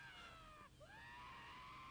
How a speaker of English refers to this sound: That's … screaming. I love that kind of stuff.